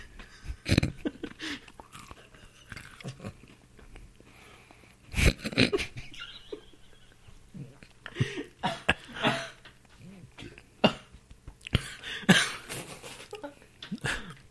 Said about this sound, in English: I was choking that drink. Good. How are you going to choke on a drink? You can choke on a drink, man.